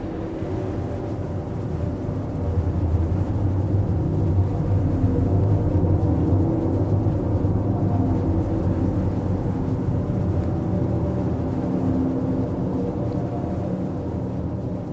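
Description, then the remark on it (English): A continuous, heavy industrial rumble with deep throbbing motor tones and a faint steamy hiss above, from a plant that takes carbon dioxide out of the air, liquefies it and pumps it underground, steady and unbroken for the whole stretch, with no voices. “And this kind of rumble, this pervasive rumble with the hissing of the steam and the throbbing of these kind of motors, this was my experience of the place.”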